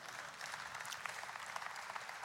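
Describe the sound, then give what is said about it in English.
Steady applause from an audience during a sermon, dense overlapping claps forming a continuous bright wash with no voices heard. “You can clap at that one if you want.”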